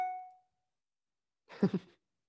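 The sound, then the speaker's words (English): A phone notification chime rings out as a single bright tone that fades quickly, followed after a second of silence by a short, two-part cough-like burst. “Sorry, I got a notification.”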